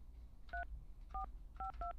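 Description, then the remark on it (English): Four short dual-pitched telephone keypad dialing tones as a phone number is dialed, evenly spaced with a brief gap before the last pair, sounding clear over a low background hum, with no voices. “Don't try to figure out what his phone number is based on the sound of the tones.”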